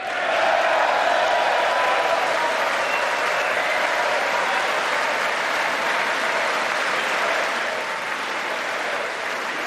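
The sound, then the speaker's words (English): Sustained applause from a large audience after the president's line that America will never be a socialist country, with Nancy Pelosi reluctantly clapping behind him; a dense, steady wash of many hands clapping that holds loud for nearly ten seconds before easing slightly at the end. “Nancy Pelosi reluctantly clapping, stone-faced, though, behind him.”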